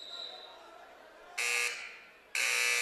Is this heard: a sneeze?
no